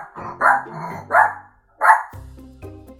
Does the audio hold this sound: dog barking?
yes